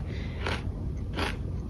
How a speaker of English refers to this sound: Mouth closed. I don't know how to make it any better than that. I'm literally just chewing.